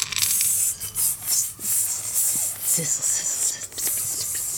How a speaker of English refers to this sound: Listen to those pine nuts sizzle, guys.